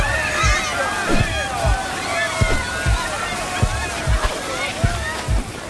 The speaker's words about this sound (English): All ready, Chief. Pumpers are ready. All hoses coupled up. We'll flood the thing with water from all angles. All right, here's the signal. Open them up! Full blast!